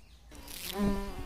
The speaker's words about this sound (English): Gunda sees two bees humming past.